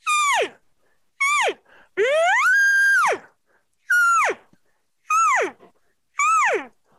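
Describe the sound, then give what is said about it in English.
Six loud, reedy bugle tones blown on a game call, the bugle tone going into a cow call tone, most short and sliding downward in pitch, one longer note that rises, holds high, then drops, with brief silences between and no talking. “Here's my bugle tone going to it.”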